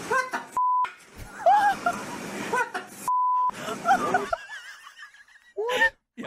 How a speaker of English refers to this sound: So five grey African parrots wouldn't stop swearing. Now, I'm going to play you a little bit of what... You have it? Yeah. Really? Okay. Now, I've beeped it out.